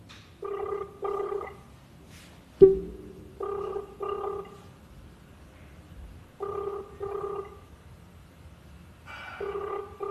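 telephone call ringing unanswered

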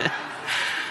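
sneeze

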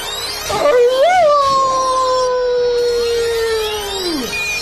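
dog howling in pain

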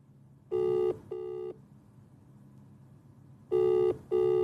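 outgoing phone call ringing

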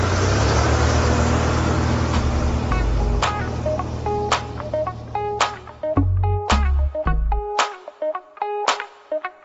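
car driving away

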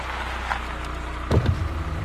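car pulling up

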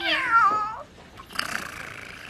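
cat meowing

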